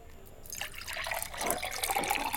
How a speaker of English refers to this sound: Commence pouring. Commence pouring, and you just need to shout stop.